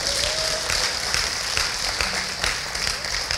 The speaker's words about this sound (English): Let's clap for Jesus.